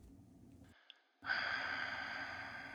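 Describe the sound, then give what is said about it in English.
Heavy, rasping breathing comes over a phone line from a caller to a radio call-in show: a low, muffled breath, a brief pause, then a louder, drawn-out hissing exhale with no talking. “Sounds like heavy breathing.”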